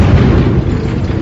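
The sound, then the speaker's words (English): A loud, deep explosion in a city under attack by the worshippers of Freedon Nadd rumbles throughout, a thick bass-heavy roar that holds steady for about a second without fading, with no voices over it. “Another explosion!”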